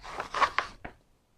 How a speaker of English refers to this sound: Then with the sucking sound a Wellington boot makes when it's pulled out of a thick, gooey mud, and the rip of dry paper.